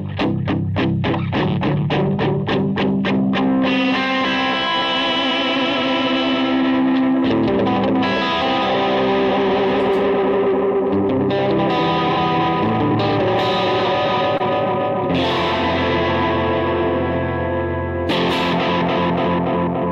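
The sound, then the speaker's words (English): Electric guitar drenched in delay and reverb from a single pedal, opening with quick repeated plucked notes that echo, then swelling into sustained, washy chords that ring out loudly and continuously with no voices. “That delay to that reverb, same pedal.”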